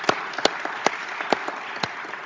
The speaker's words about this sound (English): Let me say thanks to our panelists. I think they deserve a nice round of applause.